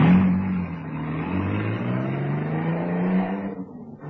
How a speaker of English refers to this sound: and then got into the car, which roared away.